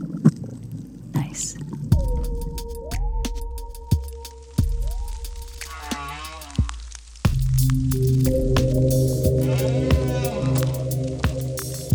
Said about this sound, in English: This is the sound of a parrotfish eating coral in Hawaii.